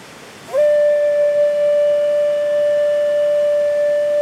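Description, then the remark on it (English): A lone flute sounds one long, steady note that starts after a moment of quiet and holds unwavering, clear and fairly loud, until the end, with no voices. “Is the flute player and his lone call.”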